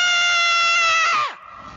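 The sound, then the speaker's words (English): A person imitates a woman's scream: one loud, sustained high-pitched shriek held for over a second, then sliding sharply downward in pitch and cutting off, with no talking. “This lady had a scream like she had a near-death experience, or like she came out from somewhere and she screamed.”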